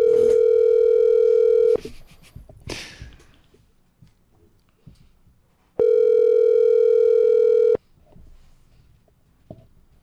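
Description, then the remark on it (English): A loud, steady telephone tone sounds in two long bursts of about two seconds each, separated by a pause filled with faint clicks and rustling, as a call is placed back about a comedy night. “No, let's just call back.”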